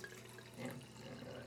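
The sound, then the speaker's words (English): Wine pours steadily into a glass, a brief, continuous liquid trickle with a faint rising gurgle and no voices. “Quick folio of some wine being poured.”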